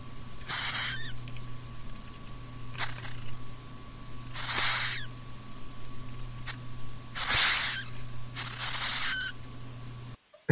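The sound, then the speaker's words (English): A hissing cockroach gives about five sharp, breathy hisses in irregular bursts, each lasting under a second, over a faint steady hum with no voices. “So for our listeners, we're going to find a clip of this hissing cockroach sound because it is terrifying.”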